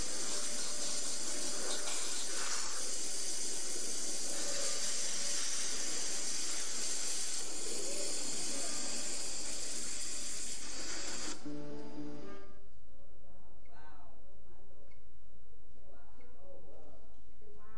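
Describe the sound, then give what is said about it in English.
A loud, steady roaring hiss of a 60,000 PSI high-pressure water jet cutting through a steel padlock runs for about eleven seconds, then cuts off abruptly, leaving quieter background with faint voices talking. “That's not steel, that's water cutting through steel, magnified, powerful.”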